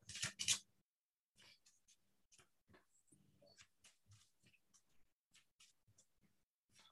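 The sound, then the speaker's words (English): A burst of crisp, riffling card shuffling, followed by a run of quick, soft papery flicks and taps as the deck is handled, with no talking. “Give us a quick shuffle here.”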